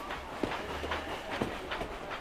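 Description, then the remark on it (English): A train rolling along the rails: a steady low rumble with a regular clickety-clack repeating roughly twice a second, at moderate volume and without any voices. “Now, do get off the train or you'll have to come too.”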